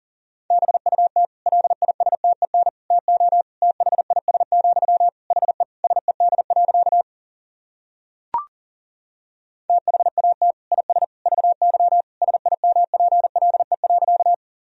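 Fast Morse code at about 40 words per minute: a single steady mid-pitched tone keyed in rapid dots and dashes, two long runs split by a pause with a brief click.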